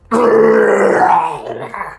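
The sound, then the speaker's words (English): During a game, a person voices a creature roaring in defiance, a single loud, growling snarl with a rough, low tone that holds for over a second, then trails off into a shorter grunt. “As it roars in defiance at you.”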